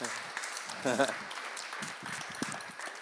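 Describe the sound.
A church gathering claps steadily for a few seconds in recognition of a member, a dense, even patter of many hands, with a brief voice calling out over the applause near the start.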